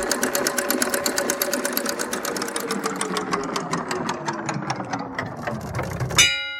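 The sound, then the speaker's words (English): A spinning prize wheel clicks rapidly at first, its sharp ticks gradually spacing out as it slows, ending with a final louder clack as it stops. No voices are heard. “So I'll spin the wheel.”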